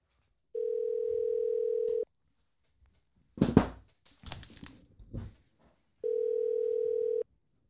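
A phone call rings out with two long, steady ringback tones, separated by a few seconds of rustling and handling noise; no one speaks.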